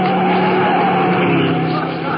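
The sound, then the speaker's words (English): A car roars past at speed, running through a traffic light, its tires screeching in a long, loud skid that fills the whole moment with harsh, sustained squealing. “The car went right through the light.”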